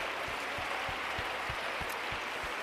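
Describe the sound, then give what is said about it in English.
An audience in a sanctuary claps together in a dense, steady wash of applause, giving the Lord a hand clap of praise, with a regular low thumping beat pulsing underneath about three times a second, loud and continuous throughout. “Let's put our hands together and give the Lord a hand clap of praise.”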